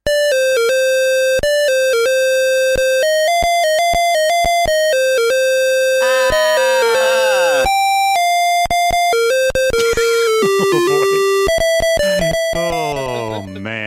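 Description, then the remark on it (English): The Quantum Leap theme from the 1990 PC video game, played in harsh, buzzy square-wave beeps from a PC speaker, steady note after note with rapid pitch sweeps and trills midway, loud and alone with no voices. “Let's listen to the theme as rendered by the ever-famous PC speaker Harsh Tones.”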